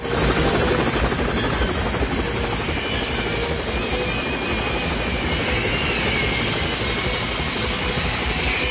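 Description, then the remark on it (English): Loud helicopter rotor blades whirring in a fast, steady chop, layered over a constant heavy mechanical roar and rumble that never lets up, with no voices; a helicopter pulled along inside the Channel Tunnel in a film action scene with Tom Cruise. “And including just, you know, Tom Cruise like leaning back and he's like trying to decapitate him with the helicopter blades while they're getting pulled along inside the channel tunnel.”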